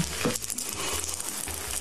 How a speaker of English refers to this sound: He's trying to get up. You can hear the diaper tearing and the glue.